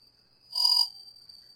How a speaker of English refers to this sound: Crickets?